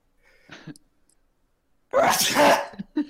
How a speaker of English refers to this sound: I have to sneeze.